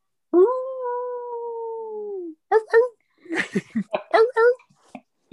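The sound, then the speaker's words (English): A person lets out a long, steady howl imitating a wolf, holding the note for about two seconds as it slowly sinks in pitch, followed by short bursts of voice and laughter-like talk. “That was more like a seal.”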